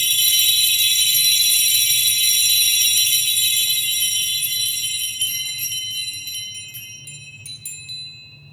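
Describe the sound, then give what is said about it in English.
A dense, clanging wash of many bells ringing at once over a low hum of music, sustained loudly before thinning out into a few scattered, fading strikes near the end. “It's like you're trying to push through like all the bleakness, and you've got all the bells, like they're kind of like the happy ingredient, if you'll allow me, like of the piece, and they're kind of all bashing away”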